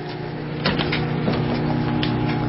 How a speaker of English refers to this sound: Power level high. 2 minutes. 0 seconds. Microwave running. Okay, now the bacon's going to start.